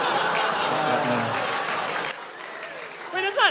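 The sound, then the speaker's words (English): A crowd claps steadily for a couple of seconds, the applause thinning and fading out as a voice begins talking over the tail end. “Not clap worthy. You don't clap for that.”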